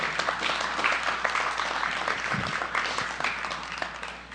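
An audience claps steadily, a dense wash of many overlapping hand claps that stays fairly loud throughout, with no clear rhythm and only faint traces of voices.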